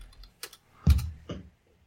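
A few sharp keyboard taps and mouse clicks in quick bursts as someone looks up the Sea Wolf audiobook on Audible, separated by brief pauses, with no voices present.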